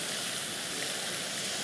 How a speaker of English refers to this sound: What a nice soothing noise. A fountain. I use this app called Noisely.